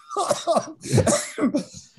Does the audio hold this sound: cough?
yes